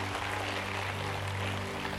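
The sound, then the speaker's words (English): A church audience in Woodville claps together in a loud clap offering of praise to God, a dense, steady wash of applause that holds for the whole stretch, with a low sustained hum beneath it and no voices. “Come on, give a loud clap offering of praise to the Lord God.”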